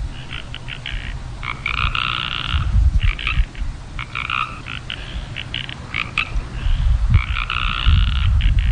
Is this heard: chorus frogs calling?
yes